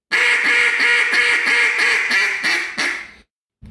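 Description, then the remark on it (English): A duck call blown in a fast run of about eight raspy hen quacks, made raspier by opening the throat, loud, each note harsh and buzzy, trailing off before a brief silence. No talking. “That's raspy. Real raspy.”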